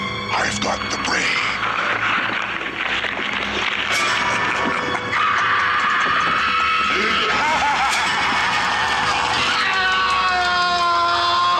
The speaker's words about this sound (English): So good. It's an agonized scream.